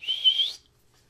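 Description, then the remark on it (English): A single short, steady human whistle at a high pitch, lasting about half a second with a slight upward lift at the end, then silence. “I'm going to whistle.”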